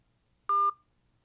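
A single short telephone keypad tone, a clear two-pitch beep lasting about a fifth of a second, sounding alone against a quiet, faintly humming background.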